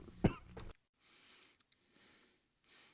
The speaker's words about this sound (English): I'm going to start coughing here in a minute, so I apologize.